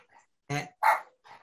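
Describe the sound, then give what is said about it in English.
A dog barks three times in quick succession, two sharp, loud barks followed by a softer, shorter one, with no other sounds around them. “And so you're dogs. I have dogs.”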